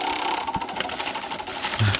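A roulette wheel spins with a steady mechanical whir and a rapid train of ticking clicks, sustained at moderate loudness for two seconds with no voices.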